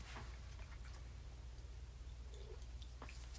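Quiet sipping of juice: a few small wet mouth clicks and slurps spaced across a few seconds, over a steady low electrical hum, with no talking.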